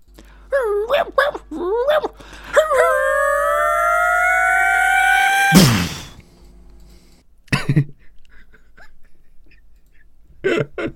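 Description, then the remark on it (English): A dog-like enemy creature from the video game Half-Life gives a few warbling yelps, then a steady electronic whine builds for about three seconds and ends in a sharp, loud shockwave blast, followed by quieter scattered sounds. “I don't know what these little guys are called, but they're the dog-like enemies who let off a little shockwave if you let them get too close to you and build up as you've beautifully performed.”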